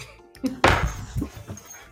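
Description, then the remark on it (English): A single sharp, loud dog bark bursts out, then fades into quieter low rumbling and faint indistinct sounds. “That's another puppy on the computer. No one's out there. I just have to show her this and she'll stop.”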